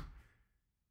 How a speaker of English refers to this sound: I was just typing very loud. I have no idea why I'm typing very loud. I'm very amped up right now.